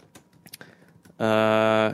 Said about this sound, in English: Well, we'll let you finish typing.